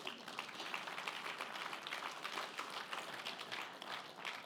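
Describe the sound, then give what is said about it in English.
A church audience applauds steadily, dense overlapping claps at an even, moderate level without pause for several seconds. “Yeah, you can clap.”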